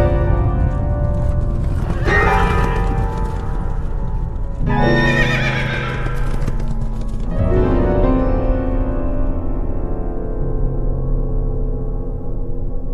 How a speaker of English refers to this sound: The horses turned for home. They were trying to get him to stop the race. The horses went scattering.